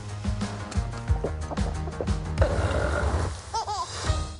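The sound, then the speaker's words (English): A long, loud, rumbling burp from the Pixar film Elemental, with a croaky, pulsing low tone that drags on for several seconds, ending with a few brief squeaky wavering tones. “Nothing like good burp joke, make things work.”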